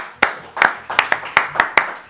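Applause made of crisp, distinct hand claps, about eight sharp slaps in two seconds at a loose, uneven rhythm, fairly loud with no talking.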